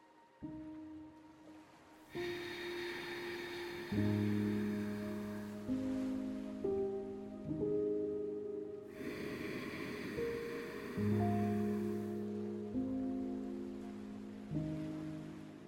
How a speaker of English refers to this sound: Let's do a couple rounds of our Ujjayi or ocean breath. For this, try to slightly contract the back of your throat to make that ocean noise, kind of like fogging a mirror, but without using your voice to make a sound.